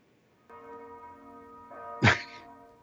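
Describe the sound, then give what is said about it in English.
Bells ring out with sustained, shimmering tones, a second strike layering in, then a sharp loud thunk cuts through before the ringing fades away. “So those are the bells, right?”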